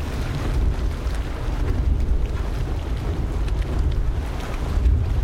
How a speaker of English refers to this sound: Yellowstone National Park's Dragon's Mouth is a turbulent hot spring about 16 feet deep with water temperatures of 170 degrees Fahrenheit. As the hot water rises to the surface, rising gases cause a pressure explosion in the spring's cavern.